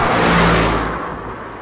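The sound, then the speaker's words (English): A Lamborghini sports car engine revs loudly as it is driven downtown, a broad roaring burst that swells then slowly eases off, with no voices present. “River was going downtown in his dad's Lambo.”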